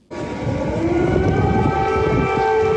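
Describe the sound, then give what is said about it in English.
Air raid sirens blare loudly and continuously in Kyiv, Ukraine, during Joe Biden's visit, a sustained wailing tone rising over a rumbling, noisy background, with no one speaking. “Air raid sirens may be blaring, but Joe Biden's visit to Ukraine was kept as quiet as a mouse.”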